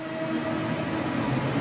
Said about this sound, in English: What's a bit creative though is that I use the Metro. You can listen to it here. I pitch down and stretch it so it's very aggressive, but then I added a bit of reverb to put it in the back to add a sense of depth to the mix.